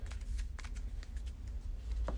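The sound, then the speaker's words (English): Cards being shuffled during a card game, a steady run of soft riffling clicks and flutters lasting a couple of seconds, with no talking. “So get that card back, shuffle it, and put one on it and move there. Shuffle the Cosmos for turn 2.”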